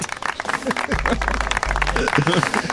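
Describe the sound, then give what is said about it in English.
An applause sound effect played on a morning radio call-in contest: a burst of crowd applause, dense and steady clapping with cheering voices mixed in, plus a low sustained hum underneath for about a second in the middle. “More applause.”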